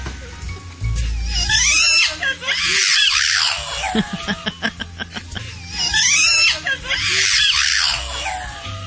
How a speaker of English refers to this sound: I think he does. I'm sorry. That dog is saying, I love you. It's clear to me.